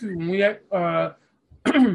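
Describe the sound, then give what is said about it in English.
Someone clears their throat close to the microphone in three short, rough voiced bursts with brief pauses between them, fairly loud and with no talking. “excuse me for clearing my throat on the mic”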